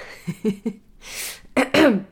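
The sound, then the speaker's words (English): A few short, muffled coughs in quick succession from a person with a cold, then a sharp breathy inhale and two louder, harsher coughs, with no talking. “Sometimes I start coughing.”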